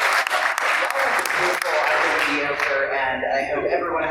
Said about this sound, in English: Well, I think if we're going to wrap then, if everyone could please give everyone a round of applause. Thank you.